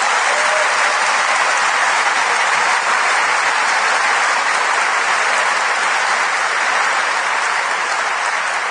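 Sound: audience applause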